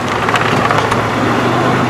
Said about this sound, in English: Reynolds moves to the side and the camera pans past the statue towards the open doors, where we see the white Ford Bronco tear into view, a load of rebar sticking up the deck.